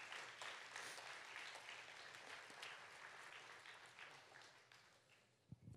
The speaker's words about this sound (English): Would you guys give our graduating class a round of applause?